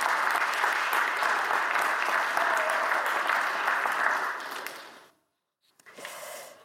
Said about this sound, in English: Someone clapped. I think we can clap for that. Pretty good.